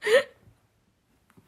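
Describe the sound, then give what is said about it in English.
A single short, close burp with a rising throaty tone, over in a fraction of a second, followed by near silence and a couple of faint small noises. “The reason we don't have significant others is because all we do is drink, burp”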